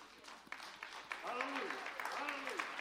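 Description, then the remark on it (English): An audience at a church service breaks into applause, scattered claps quickly building into dense, steady clapping, with a few voices calling out and whooping over it. “So it's going to be like, do we clap for that?”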